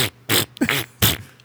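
A quick run of four loud, breathy fart noises given as a rating of a band, each a short sputtering blast with brief gaps between them, with no talking.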